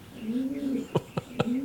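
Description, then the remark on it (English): A breeding pair of racing pigeons, named Little Bill and Seagull, coo in a low, wavering murmur, broken midway by three quick, sharp taps or clicks before the soft cooing resumes. “Way Out in the Wing has just purchased a breeding pair of racing pigeons.”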